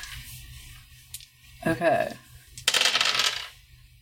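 Six-sided dice, one red, one black and one white, clatter and tumble across a hard tabletop in two quick bursts, a rattling roll followed by a brighter, louder scatter, landing on 2, 2 and 6.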